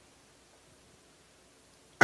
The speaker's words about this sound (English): Excuse me. Excuse me while I cough one out.